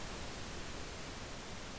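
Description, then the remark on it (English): A steady wash of low static hiss from a void-filled screen, even and continuous at a fairly quiet level, with no voices or other sounds over it. “The scene cuts to a void-filled screen that lets out a low level of static building.”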